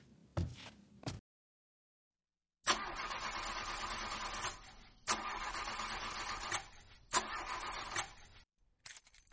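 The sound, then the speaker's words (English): A car engine cranks over and over without catching, failing to start, several long, grinding starter bursts separated by brief pauses, loud with no voices. “Now it's not starting and it's broken down.”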